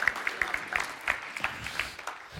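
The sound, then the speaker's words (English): An audience claps in a steady, dense patter of many hands, fairly soft and even throughout, with no voices over it. “That was well and truly worth a round of applause.”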